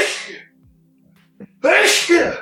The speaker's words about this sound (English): Give that man some medicine. Oh, my gosh. Sorry, literal sneezing attack.